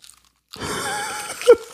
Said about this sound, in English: Let's see how quietly we can record this podcast. You eat chips and I chew this huge, huge thing of gum in my mouth. See if we can do this whole podcast without people noticing.